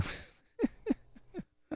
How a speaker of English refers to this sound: I hear you breathing. You're alive. Congratulations. You're welcome. Yeah. Oh, there he is. Breathing away.